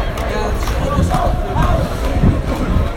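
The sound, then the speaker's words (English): A dense crowd of football fans shouts and chants outdoors about Wayne Rooney, voices overlapping into a steady, loud roar of mid-pitched yelling that never lets up across the few seconds. “There's lots of shouts outside about him.”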